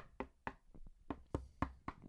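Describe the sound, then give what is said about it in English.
Someone knocks on Holliday's door, a string of about seven or eight sharp raps in uneven bursts, fairly quiet, with no voices. “Let me just knock on the door.”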